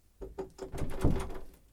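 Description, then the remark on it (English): The handle of a locked door is rattled and jiggled several times in quick succession, producing clunky metallic clicks and thumps as the door holds fast, moderately loud. “It's locked.”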